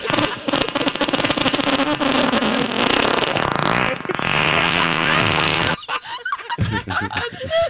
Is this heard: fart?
yes